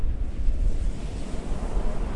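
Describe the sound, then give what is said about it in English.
Heavy ocean surf roars continuously all along a port on a dark night, a deep, loud churning of big waves, big as houses, with gusty wind noise over it and no clear gaps between breakers. No voices are present. “It's a dark night, black as ink, and all along the port the waves are coming up, big as houses.”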